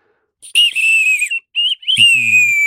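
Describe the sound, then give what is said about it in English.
A nightingale bird-call whistle, filled a quarter full with water, is blown in three warbling bursts, a bright, high, wavering trill imitating a nightingale, with a short low rumble near the end. “So this is a nightingale.”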